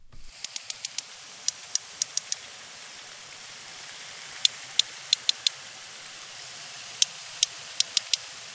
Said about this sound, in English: They make decisions democratically, speak their own distinct dialects, and stick to their own social groups, all of which makes sperm whales a lot like human beings, except they do sound a bit different.